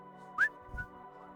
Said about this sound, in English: I'm just going to whistle on the way out.